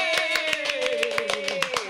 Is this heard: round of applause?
yes